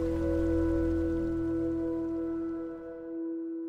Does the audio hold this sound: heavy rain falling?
yes